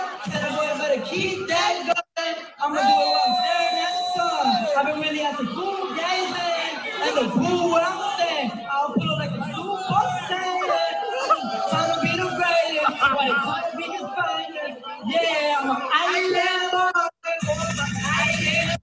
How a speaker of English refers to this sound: So okay, hold on. So the people are booing.